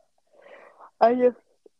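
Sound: a yawn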